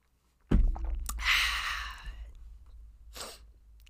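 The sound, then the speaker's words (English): A soft clunk, then a drawn-out, hissy slurp as someone sips hot coffee, followed by a short breathy exhale. No talking. “Sip coffee time. Coffee. Sip time.”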